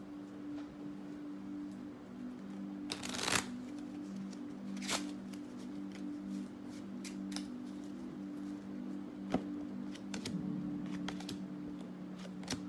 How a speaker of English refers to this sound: Oh, no. Have I been shuffling? Oh, no. I'm good. I thought I was shuffling them upside down.